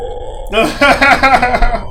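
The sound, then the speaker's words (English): A voice imitates a zombie's groan: a low, raspy, gurgling moan that starts abruptly and wavers for about a second and a half, fairly loud with a throaty, belch-like texture. “What do you hear? A zombie.”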